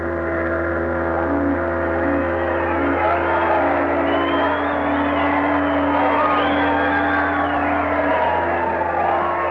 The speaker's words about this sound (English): There was shouting and rejoicing. There was singing and laughter.